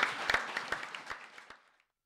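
Audience applause: many overlapping claps with sharp individual hand strikes, starting full and steadily thinning out until it fades away after about two seconds.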